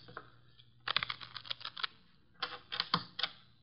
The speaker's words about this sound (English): The cards are shuffled. I'll place them in the center of the table.